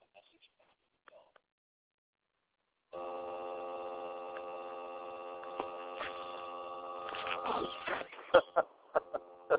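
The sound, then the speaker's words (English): After a few seconds of near silence, a telephone rings with a steady, buzzy tone that holds for several seconds, then breaks into a burst of clattering knocks and clicks. “The phone rings.”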